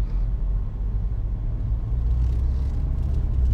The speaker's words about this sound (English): No, they're fixing the bridge or something. Yeah, but let us go before this tractor goes.